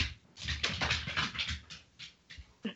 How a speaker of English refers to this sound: There's a dog in the background. Sorry, Ellie is like starved for attention tonight, and he's like running around the apartment.